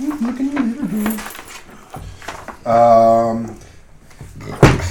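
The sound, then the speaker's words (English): A small door creaks open with a drawn-out, tonal hinge squeal, followed by a sharp wooden knock; a voice murmurs briefly beforehand. “Let's check out that little door there.”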